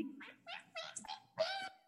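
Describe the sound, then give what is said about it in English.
A voice imitates a cat meowing at the end of a song: five short, high meows in quick succession, clear, with the last one louder and drawn out longer. “The meow meow sounds was very interesting at the end of the song. I make that sound.”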